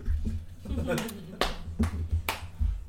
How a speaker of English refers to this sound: slapping his knee, so that's how I know it's good. one man applause.